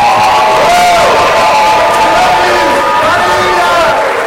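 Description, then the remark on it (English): A crowd at Rock Revival Center cheers and applauds loudly and steadily to welcome guest Brian Guerin, with whoops and shouts rising over a dense wash of clapping, sustained without pause throughout. “And so can we just give like a warm Rock Revival Center welcome to Brian Guerin?”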